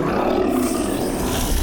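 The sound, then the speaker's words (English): A giant charging into a battle gives a deep, rumbling roar, loud, holding steady and unbroken for under two seconds with a harsh, growling texture and no voices. “Wait a minute. I know that roar.”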